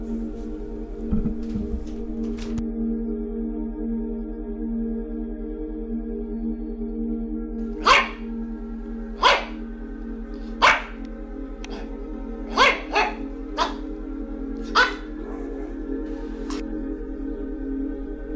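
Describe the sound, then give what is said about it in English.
Dogs bark in a series of short, sharp outbursts, irregularly spaced, over a steady low droning hum that continues throughout. “Oh my god, stupid dogs.”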